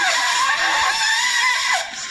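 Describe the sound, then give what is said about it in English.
A bass shofar (ram's horn) blown in one loud, strained blast lasting about two seconds, its raspy, wavering tone sliding in pitch before dropping off slightly at the end. “This is bass shofar.”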